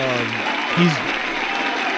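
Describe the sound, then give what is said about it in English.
A studio audience claps and cheers steadily for two seconds, a dense wash of applause with a couple of short vocal whoops rising out of it near the start and middle. “we gotta let our studio audience in to check it out.”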